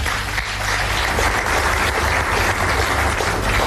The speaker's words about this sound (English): Now, this organization, which has served the interests of the citizens here, celebrates 50 glorious years. Ladies and gentlemen, I think that deserves a round of applause.